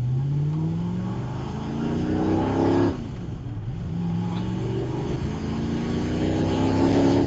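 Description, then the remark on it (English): The loud engine of a Ford GT40 race car revs hard as it accelerates up through the gears on the track at Dunton, its pitch rising in sweeps with a brief drop at a shift. “The other GT40 has just arrived back. And here we go.”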